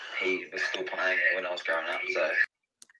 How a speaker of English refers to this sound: Echo. He's lagged out.